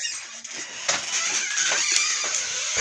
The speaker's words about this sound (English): Loud door.